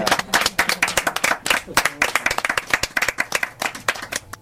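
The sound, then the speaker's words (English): An audience at a poetry reading event at Novel Idea Bookstore in Ottawa applauds the reading and the poetry with dense, continuous clapping, many hands striking in a busy, uneven patter that holds steady at moderate loudness for several seconds. “And how about if we applaud the reading and the poetry at the same time?”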